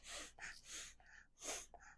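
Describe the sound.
A child sniffs repeatedly when asked to make a sniffing noise, a quick series of soft, breathy inhales and exhales in an uneven rhythm, fairly quiet, with no talking.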